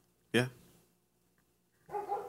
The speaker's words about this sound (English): Dog just won't shut the fuck up.